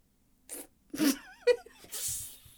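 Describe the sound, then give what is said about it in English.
A door pushed shut with a few sharp knocks and a brief metallic squeak, followed by a scraping rattle as the lock is turned, with no one talking. “Mrs. Stewart, why did you lock the door?”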